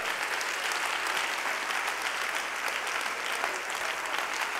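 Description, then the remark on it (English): A crowd claps hands unto the Lord, steadily for several seconds, a dense, loud wash of overlapping claps with no pauses and no voices standing out. “If you're excited, why don't you clap your hands a little louder?”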